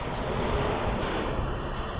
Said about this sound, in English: Going under a throughway at the moment. A boat just crashed into the side of our boat and we're sinking. No, that was the singing bridge.